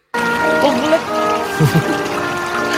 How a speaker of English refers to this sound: But decent little water feature, team. Decent little water feature. Probably the best bit. Love a bit of water feature. Love a water feature.